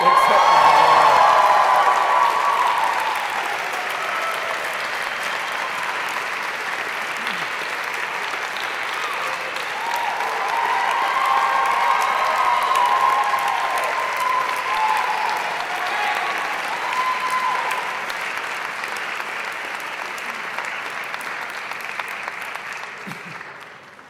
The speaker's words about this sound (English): Everything in due course has an answer, and for those of you in the audience who heard Jackie getting this round of applause when she came up to get her degree, now you know the reason why.